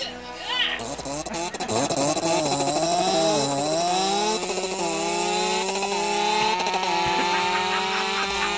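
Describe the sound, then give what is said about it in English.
A chainsaw roars to life and revs up, its whining engine pitch climbing then holding a loud, steady buzz for several seconds. “Francis Ford Owensby presents The Chainsaw Ted Massacre, starring Chainsaw Ted as Chainsaw Ted.”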